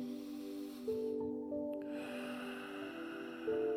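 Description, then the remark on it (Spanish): A long, deep breath drawn in through the nose during a guided relaxation breathing exercise, a soft airy hiss lasting a few seconds, with sustained tones of calm background music underneath and no one speaking. “Vámonos tomando cuenta de nuestra respiración. Respira profundo.”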